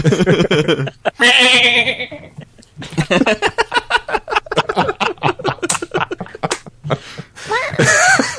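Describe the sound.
A loud, wavering goat bleat cries out near the start as a goat is launched from a trebuchet, followed by a stretch of people talking, with another brief strained cry near the end.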